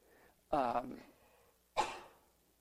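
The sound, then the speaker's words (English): A single sneeze: a short voiced intake rising into a sharp, hissy burst that trails off quickly, with no talking around it. “Bless you.”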